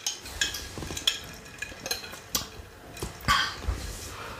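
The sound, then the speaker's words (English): A metal straw stirs ice cubes in a glass of cold water, giving a string of irregular clinks and rattles, some sharp and bright, over a low background hum, with no talking. “You guys want some, like, ASMR with this metal straw and the ice cubes?”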